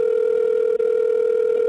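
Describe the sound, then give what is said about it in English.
A steady telephone line tone, heard while placing a call to Twin Peaks cast member Michael Horse, hums at one unchanging mid pitch, continuous and fairly loud, with a single tiny break partway through and no voices. “Okay, I got a call.”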